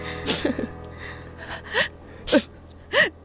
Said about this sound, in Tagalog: Anak. Teka, bakit pa kayo iyak ng iyak?